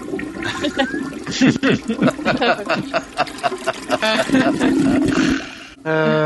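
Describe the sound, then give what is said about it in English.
A loud toilet flush sound effect played from a soundboard roars for several seconds with gurgling, rushing water, ending abruptly in a short tonal buzz; faint voices may be mixed under the noise. “Speaking of the Flash, we need to test this, test the soundboard out for the new nickname we have for the Flash movie. Anyone remember what we're calling it? The Flush?”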